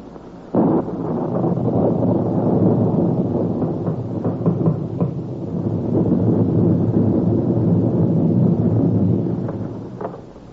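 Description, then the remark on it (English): A loud, steady roar of stormy wind on a January night sets in abruptly and blows without pause for about ten seconds, rumbling and gusting slightly, with no voices. “on that stormy night in January when Mr. and Mrs. Dougal arrived at their lodging”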